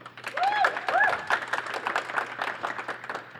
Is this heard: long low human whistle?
no